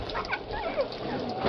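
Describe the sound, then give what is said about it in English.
A collie puppy with a bandaged, splinted broken leg whimpers and yips, a string of short, high, wavering whines rising and falling in quick succession, fairly soft, with no one talking over it. “Trying to find a home for this collie pup.”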